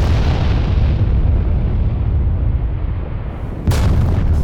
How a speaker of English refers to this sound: The pod swings down halfway, snaps off the other side, crashes to the ground, mushroom cloud, the nuclear bomb that you literally just unhooched from the ceiling has now killed all of you.